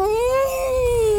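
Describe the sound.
A voice imitates an electric car's whine: one steady, loud, high-pitched hum that rises slightly, then sags for just over a second, with no talking over it.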